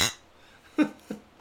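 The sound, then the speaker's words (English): Glasses clink together in a toast, a few short, light taps spread over a second or so, fairly quiet, with no talking. “Oh, well, cheers to that, bro.”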